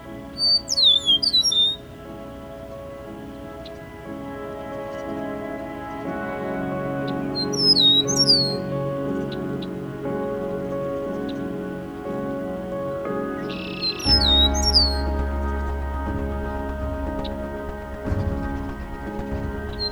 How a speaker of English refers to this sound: They are readily found around farmland and in tall grass prairie habitats, and are present year-round in all but the northernmost reaches of their range. Few birds announce the arrival of spring louder than a meadowlark.